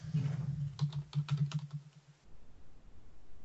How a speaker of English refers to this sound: The always exciting typing on the show.